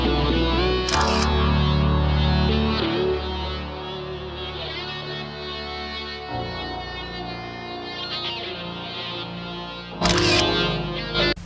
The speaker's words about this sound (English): This music, I know, was very commonplace in TV at that time because you didn't have to pay that many rights.